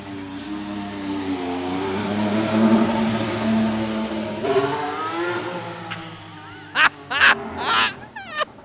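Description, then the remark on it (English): A Formula 1 car pulls out of the pit lane on a warm day, its engine droning and then rising sharply in pitch as it accelerates away, followed by several short, loud bursts. “You just don't get to do this, to stand in the pit lane as a car drives out, which is what it's doing right now.”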